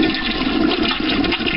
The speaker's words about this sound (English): Oh, God, it's flushing more time. Oh, no, there's 3 toilets flushing now. This is terrible.